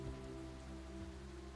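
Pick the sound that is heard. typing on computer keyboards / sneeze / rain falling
rain falling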